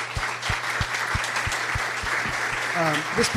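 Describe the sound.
A room full of people claps steadily in a dense, sustained burst of applause, with a faint rhythmic thumping underneath and a voice briefly calling out near the end.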